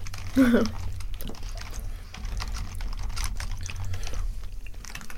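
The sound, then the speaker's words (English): Crunchy chewing of milk chocolate with crisp rice, a Wizarding World chocolate from Jelly Belly, with irregular crackly bites and snaps spread across several seconds over a steady low background hum, plus a brief murmured vocal sound near the start. “Crunchy”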